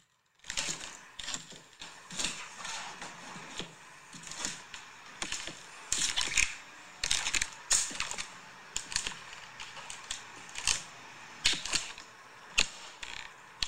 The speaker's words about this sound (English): I'm imagining you walking around in squeaky boots. Are you stepping on someone's neck? You gotta play that again. Oh. Yeah, no, it's totally you just walking around in boots, right?